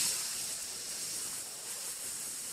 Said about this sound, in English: So that's what happens at Fatburger. You get to watch the whole process, right? They pull the patty out. They slap it on the sizzling grill.